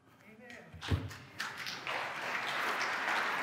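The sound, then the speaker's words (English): After a single dull thump, applause from an audience swells up and builds into steady, sustained clapping that fills the room, with crowd noise mixed in. “Don't applaud.”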